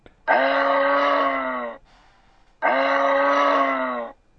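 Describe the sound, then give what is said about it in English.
A moose call: two long, drawn-out moaning bellows, each lasting about a second and a half, loud and steady in pitch with a rich, buzzy tone, separated by a short pause. “Yes, I chose moose.”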